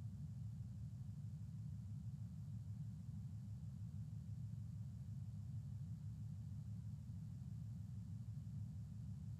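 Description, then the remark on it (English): A steady, low car rumble fills a phone call line as the caller's connection drops out, road and engine noise over a weak phone connection, droning on continuously with no voices. “I think we're still losing you here.”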